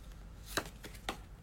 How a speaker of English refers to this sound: And this is a card that actually fell out while I was shuffling, but it fell out because I felt that it was falling out because I was messing up my shuffling.